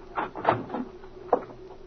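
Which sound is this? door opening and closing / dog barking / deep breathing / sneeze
door opening and closing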